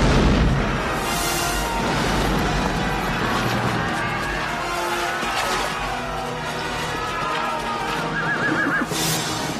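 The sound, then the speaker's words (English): A loud, continuous battle din: a gunner fires a cannon with a linstock, booming cannon fire and heavy crashing debris of walls, with horses whinnying and hooves clattering through the chaos. “And the nimble gunner, with linstock now, the devilish cannon touches, and down goes all before them!”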